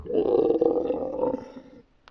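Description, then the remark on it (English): A troll, speared through the rib cage and heart, lets out a single loud, drawn-out dying screech, a rough roaring cry that holds for nearly two seconds before trailing off into quiet. No one speaks. “And it screeches one last time.”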